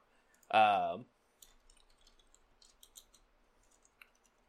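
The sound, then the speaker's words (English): A short vocal exclamation, then a few seconds of light, scattered clicks and rattles as dice tumble through a dice tower, quiet. “I'm not saying that your dad cursed these dice before he gave them to me on Christmas, but they're not rolling that great.”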